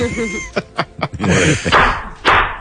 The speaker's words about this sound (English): That's a gavel, by the way.